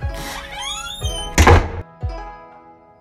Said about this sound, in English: You see me run to the exit, like the entrance where you just walked in, the door's closed, and I'm just like... and then I open the door and then I leave.